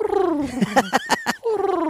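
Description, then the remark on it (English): A person mimics a cat's purr with their voice, a rolling vocal rumble broken by a few quick rhythmic bursts in the middle, lasting about two seconds. “A purring cat.”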